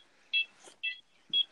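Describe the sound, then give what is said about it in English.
Three short electronic beeps from a house alarm keypad as buttons are pressed to enter the code, spaced about half a second apart, clear with faint clicks between them and no talking. “Don't copy my code with the alarm.”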